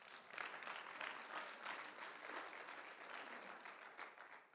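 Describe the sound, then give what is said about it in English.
An audience claps steadily, dense overlapping handclaps forming a continuous bright wash of applause that holds a fairly even loudness for several seconds with no talking. “Yeah, you can clap.”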